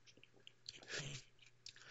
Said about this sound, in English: Excuse me, let me take a quick sip.